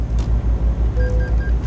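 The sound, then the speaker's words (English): Car tyres drumming over a rumble strip as the car drifts out of its lane into the emergency stopping lane near Klagenfurt, in light drizzle: a loud, steady low rumble pulsing in quick, even thumps, with faint high tones chirping briefly partway through. No one speaks. “There's that rumble strip. Yeah, every now and again, if you've heard a rumbling noise like that, that's me drifting out of my lane into the emergency stopping lane in the right hand”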